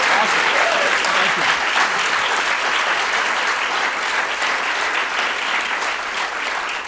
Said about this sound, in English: Let's hear a big round of applause for this brilliant, brilliant gentleman. Thank you. Thank you very much.